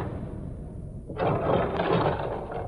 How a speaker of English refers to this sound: This elevator takes all day.